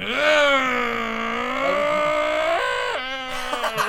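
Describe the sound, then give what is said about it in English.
A voice imitates a chainsaw with a loud, buzzing, steady drone held for several seconds, briefly catching and dropping in pitch before revving back up. “let me turn on this what is it? Chainsaw.”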